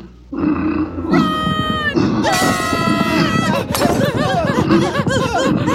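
A rhinoceros grunts and roars loudly up close, a string of rough, throaty bellows and snorts running together for several seconds with no talking.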